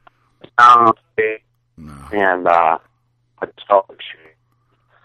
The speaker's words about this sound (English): Yeah, your phone is going in and out